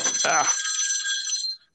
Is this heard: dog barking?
no